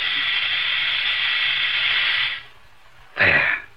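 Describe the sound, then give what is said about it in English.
A loud, steady hiss of a hot chemical solution, heated just below the boiling point, steaming and fizzing for about two seconds as it is added to another solution, cutting off abruptly, then a short sharp burst of hissing near the end. “I'm about to add the hot solution to the other.”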